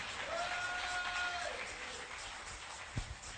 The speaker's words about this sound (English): Oh, you can clap your hands.